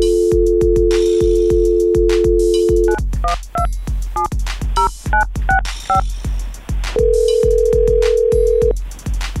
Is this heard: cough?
no